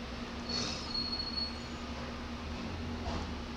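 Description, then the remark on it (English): A truck passes outside with a steady, low engine drone, and a thin high-pitched squeal briefly cuts through early on before the rumble carries on. No one speaks. “I heard a truck out there.”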